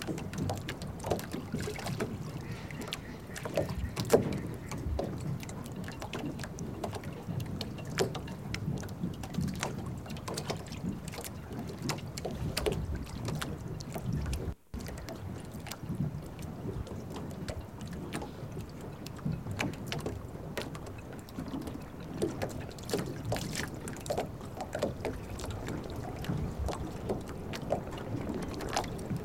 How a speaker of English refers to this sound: As we travel upriver, the constant stream of water flowing out to sea draws us back.